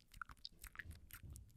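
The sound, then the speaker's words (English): A voice imitates a work colleague's loud, wet open-mouth gum chewing: rapid smacking and clicking mouth sounds in an irregular rhythm, with no talking. “I have a colleague at work who chews gum for the entire day. That's fine, no judgment, but it's like this.”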